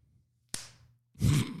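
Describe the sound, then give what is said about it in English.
A sharp slap of the right hand against the bottom of the wrist rings out, made as a rude gesture that in Turkey means 'fuck you', followed a beat later by a heavier, muffled thump and brief rustle of movement, with no talking. “So you slide your right arm over your wrist into your hand, and then you flop out the two fingers and dick guy, and then slap the bottom of your wrist.”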